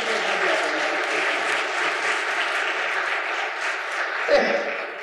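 A crowd claps steadily and densely throughout, a sustained wash of applause from a sizable audience, with a brief sharper sound near the end.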